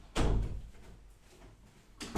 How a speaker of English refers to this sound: Wait, hold on. Let me go close the doors.